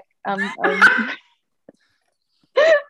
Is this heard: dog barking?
yes